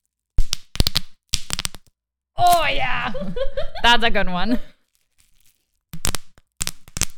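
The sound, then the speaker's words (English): Bubble wrap twisted and popped: quick clusters of sharp, loud crackling pops in short bursts, then a stretch of laughing talk, then another run of crisp pops at the end. “These goddamn oh, bubbles like, are so you also you should like twist it like you're cracking someone's okay, back.”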